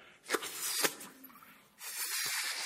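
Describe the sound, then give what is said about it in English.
Breathy bursts of air, two sharp puffs followed by a longer steady hiss, as someone blows hard into a balloon to blow it up, moderately loud with no talking. “Just going to blow up a balloon.”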